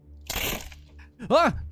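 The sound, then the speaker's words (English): A voice imitates a floor of wood planks cracking and crumbling as an area falls away: a short, harsh, noisy crunch, then a louder voiced groan that rises and falls in pitch. No actual words are spoken. “Below you, the floor cracks and crumples, and this area here falls away.”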